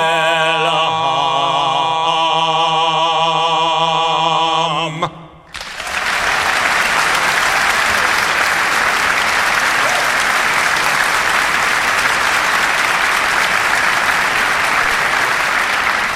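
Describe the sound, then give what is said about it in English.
A recorded song plays its final few seconds, then a large audience breaks into loud, sustained applause that continues steadily for about ten seconds, with no talking. “No, I don't think that applause for me.”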